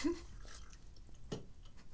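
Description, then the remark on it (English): Water is poured quietly into a cup with lemon in it, with a couple of soft plops and drips standing out against a faint background hiss; no one speaks. “I'm transferring water into my cup with lemon in it so that I can have more lemon water.”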